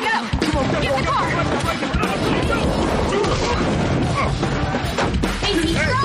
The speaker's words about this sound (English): Casey's here to save the day by crashing his Crown Vic into the restaurant. Is that a Crown Victoria?